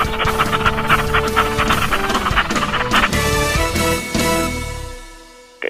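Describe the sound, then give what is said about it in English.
A dog pants in quick, steady breaths, fairly loud, over a sustained tonal background, with the rhythm fading out near the end. “Get the stinky dog away from me.”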